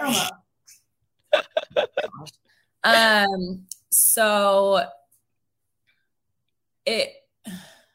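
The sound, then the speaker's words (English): A dog sneezes in a quick series of short, sharp snorts, followed by longer voiced, pitched sounds that may be a person mimicking the sneezes, then two more brief bursts. “My dog is over here having a sneeze attack. I don't know if you can hear him.”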